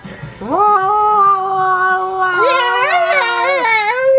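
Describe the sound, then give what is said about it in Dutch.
A voice imitates pet cats that fight every night with a long, sustained yowl that holds steady, then breaks into wavering, rising and falling wails, loud and strained throughout. “De poezen hebben elke nacht is het rel. Ja. En dan maken ze dit geluid.”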